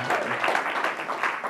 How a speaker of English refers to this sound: She said yes. She said yes. You can clap at that. She said yes.